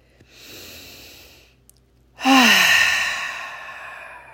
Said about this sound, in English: So I want to do a meditation right now to reduce your stress. If you can, sit in a chair and take 3 deep breaths.